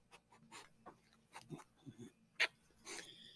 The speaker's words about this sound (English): My dogs come to join me, tell me that it's the end of the podcast.